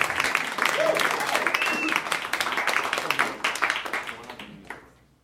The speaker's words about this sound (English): Keep clapping for your final competitor